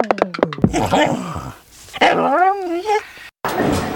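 A dog gives a quick run of sharp barks, then lets out drawn-out, wavering whines and whimpers, fairly loud, with no one talking.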